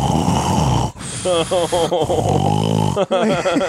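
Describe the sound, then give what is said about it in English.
An imam at a mosque in the Middle East, having left the microphone on, snores loudly through the mosque loudspeaker around 2 a.m., broadcast across the city, with rough, rasping inhales and throaty exhales repeating in an uneven rhythm, the amplified sound harsh and slightly distorted. “This fool's sawing logs through the city. They fucking project that shit loud.”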